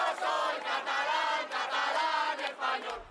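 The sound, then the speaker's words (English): A crowd of roughly 350,000 people at a Sunday demonstration in Barcelona, Spain, advocating for Catalonia remaining part of Spain, chants together in loud, rhythmic bursts, many voices rising and falling in unison with brief dips between phrases. “a crowd of roughly 350,000 people assembled in the Catalan capital of Barcelona on Sunday to advocate for the region remaining part of Spain.”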